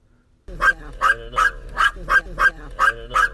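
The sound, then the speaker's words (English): A dog named Gracie barks repeatedly in a steady rhythm, about eight sharp, loud barks in quick succession, with no talking over them. “Gracie loves to bark.”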